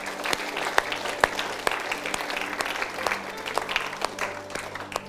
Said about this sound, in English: Would you give a clap offering to our King?